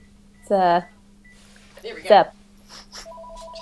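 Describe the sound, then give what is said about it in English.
A phone rings with a steady two-tone electronic trill near the end, following a couple of short vocal sounds over a low constant hum. “My phone's ringing here.”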